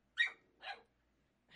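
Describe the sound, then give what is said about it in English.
A dog barks twice in quick succession, sharp bursts, followed by a short pause and the start of a third bark. No one speaks. “Sorry, I'm trying to make eye contact with the dogs.”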